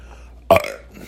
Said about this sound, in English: That wasn't a cough. It was a burp, guys. Calm down.